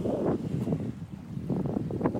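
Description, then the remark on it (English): A rowing boat pushes through open sea towards Ireland, with steady wind buffeting the microphone and low rushing, churning water noise swelling and easing in rough surges. No voices. “I am going to do my best to keep this boat moving towards Ireland for the next 16, 17, 18 hours.”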